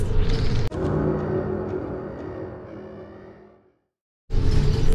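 A city bus, number 3261 X8, rumbles as it pulls away, its low engine and road noise rolling steadily before fading into brief silence, then a fresh burst of traffic noise cuts back in.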